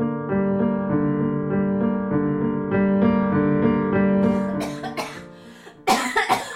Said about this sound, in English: The old woman in line at the pharmacy couldn't stop coughing.